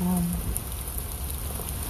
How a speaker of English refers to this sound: As we listen to the rain.